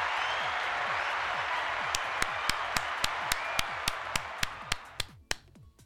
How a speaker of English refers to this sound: CNC Ireland, everybody, please give CNC Ireland a big round of applause for being one of the greatest people here.